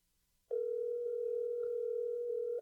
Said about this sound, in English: So it's just a phone ringing in the toy department? Like just some creepy fucking. Just some phone going off.